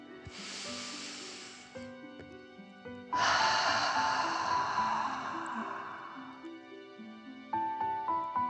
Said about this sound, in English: Now, let's take 3 more deep dragon breaths. Remember to breathe in through your nose, filling up your chest and belly, and then out, pretending you are breathing fire. Deep breath in and out.